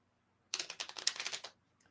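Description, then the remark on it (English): A crisp riffle of playing cards being shuffled, a fast flurry of papery clicks lasting about a second, followed by a faint soft tap. “That was better than any of the other shuffles you've done.”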